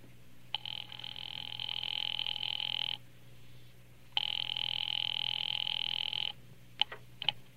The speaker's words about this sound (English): Ringing Murray Hill 70093.